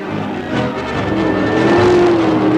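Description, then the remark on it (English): A car engine roars loudly and steadily, its pitch climbing and sliding as it revs, with a dense rumbling growl and no voices. “There was no driver in the car.”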